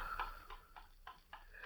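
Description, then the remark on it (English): A clock ticks steadily, six crisp, evenly spaced ticks at a brisk regular pace, with a slight alternating tick-tock quality and a faint low hum underneath. “For a time, there is no sound in the room except Sidney's heavy breathing and the rhythmic ticking of the clock.”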